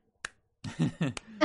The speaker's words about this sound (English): That was good. Little slow clap. The slow clap.